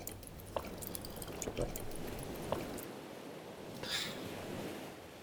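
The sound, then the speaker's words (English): Coconut water pours from a coconut in a steady splashing trickle for a turtle to drink, with a few sharp drips and gurgles over a soft hiss, moderately quiet. “Quick, get me a coconut. Here, drink, turtle friend, drink.”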